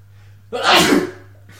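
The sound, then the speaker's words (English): A single loud sneeze bursts out sharply and fades within about half a second, over a faint steady hum, with no talking. “Bless you.”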